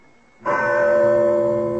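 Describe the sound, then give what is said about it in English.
A loud bell for summoning the servants anywhere on the grounds is struck once after a moment of near silence. Its sharp clang settles into a sustained, shimmering metallic ring that holds steady to the end. No voices. “Well, that is quite a bell to summon the servants.”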